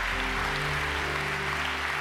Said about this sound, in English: Come on, I-Town, let's clap our hands for all those who made a decision.